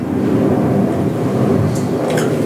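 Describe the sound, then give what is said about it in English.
An airplane, linked in the talk to Burbank Airport, flies overhead, a loud, steady low rumble that fills the whole stretch without letting up, with a faint airy hiss riding on top near the end. “Yeah, it's an airplane.”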